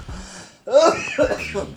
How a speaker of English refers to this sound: I want to cough.